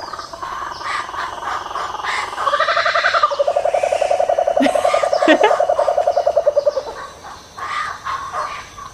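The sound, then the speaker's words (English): A laughing kookaburra's call builds from scattered chuckles into a loud, rapid run of cackling hoots about two seconds in, holding for several seconds before trailing off into softer chortles. “Laughing Kookaburra”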